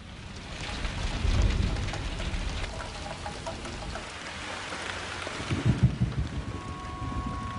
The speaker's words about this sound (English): There was a storm.